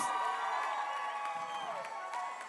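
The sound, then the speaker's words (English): An audience at a sermon yells and cheers after the preacher calls out to single people, a steady, dense roar of many overlapping voices with scattered higher shouts and whoops, holding at an even loudness throughout without a break. “The Bible, I just want to encourage you, all those yelling, you might find something first.”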